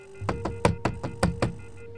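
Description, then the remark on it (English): Knuckles rap on a hotel room door seven times in a quick, fairly steady rhythm, each knock sharp, with a faint steady hum underneath and no voices. A bellboy is knocking despite a do-not-disturb sign on the knob. “He raced upstairs, and though a do not disturb sign hung from the knob, he knocked anyway.”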